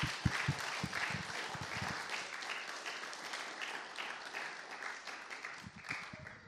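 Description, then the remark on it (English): A crowd applauds two participants after they do press-ups, a dense wash of many hands clapping that holds at an even level throughout, with a few sharper individual claps standing out near the start and end. “Can we just have a round of applause for both our participants?”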